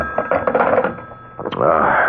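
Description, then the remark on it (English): A telephone rings with a steady, high electronic tone, fairly loud, while voice-like sounds overlap it, swelling again toward the end. “Oh, it's a phone.”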